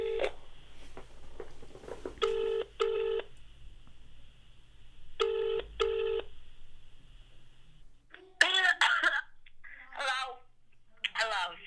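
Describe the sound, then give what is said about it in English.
A phone call to a socialite in LA rings out with two double-burst ringback tones over a faint steady hum, then the call connects and people start talking. “Okay, so we're just ringing.”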